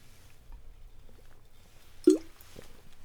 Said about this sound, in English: Sorry, I'm just taking a sip of water, because this is a lot of talking.